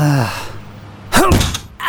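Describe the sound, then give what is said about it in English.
A short, falling vocal strain gives way to a loud, dull thump of a fist striking the window of a space van, with a brief ringing after the hit. “You can't break a space window by punching it.”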